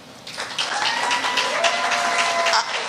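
An audience breaks into steady applause as a hand clap of praise to God, after a brief quiet moment, many hands clapping together in a dense, sustained wash that stays loud and full through to the end.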